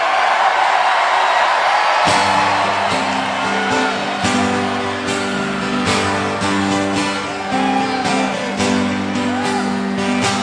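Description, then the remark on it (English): A loud crowd cheers for the Pittsburgh Pirates baseball team throughout, with whoops and shouts over a steady roar. After about two seconds, sustained musical tones join in and play under the cheering. “Let's hear it for those Pittsburgh Pirates.”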